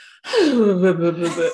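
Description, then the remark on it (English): A person vocally imitates a snore, mimicking sleeping mouths opening and closing as if snoring: a single drawn-out, breathy, voiced gasp that slides downward in pitch, lasting about a second with no other talk. “So they're opening and closing as if they're snoring, which I was concerned about because, like, you need to check on baby sleep apnea.”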